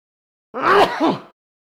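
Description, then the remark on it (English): A single voiced sneeze: a quick rising breath that bursts into a sharp, noisy 'choo' and trails off, under a second long, with no talking around it. “Oh, well, bless you anyway.”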